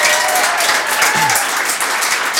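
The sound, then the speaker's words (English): Loud, dense applause from a quiz audience after a contestant gives the right answer, a steady wash of many hands clapping at once with no pauses, enthusiastic. “Yeah, let's give it an applause.”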